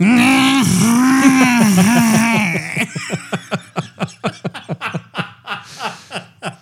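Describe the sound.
A voice imitates someone breathing heavily after picking up a phone call: a long, wavering groan, then a quick run of rhythmic, breathy huffs like heavy panting, loud with no words spoken.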